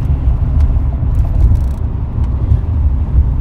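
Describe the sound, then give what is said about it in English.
Steady low rumble of a car cabin while driving to the airport, a continuous dull drone of tyres and engine with faint higher hiss and occasional small bumps, moderately loud, no voices. “So if you hear like background. background noise. That's what it is. We're in the car, and I'm on my way to drop her off to the airport.”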